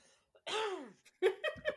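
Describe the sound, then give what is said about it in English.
A drawn-out, voiced throat sound followed by a few short, rough coughs in quick succession, moderately loud, with no speech. “I'm just coughing. Coughing in the background.”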